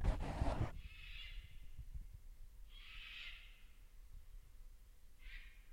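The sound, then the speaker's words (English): Loud birds call outside a window: three drawn-out, breathy, high-pitched cries spaced a second or two apart, following a brief rustling thump at the start, with no one talking. “Some crazy loud birds here.”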